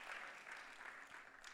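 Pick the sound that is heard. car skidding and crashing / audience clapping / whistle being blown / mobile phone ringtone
audience clapping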